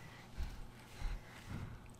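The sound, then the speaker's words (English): A baby boy's soft, snuffly breathing, three low puffs spaced about half a second apart, faint and heard alone with no talking. “That's just baby breathing.”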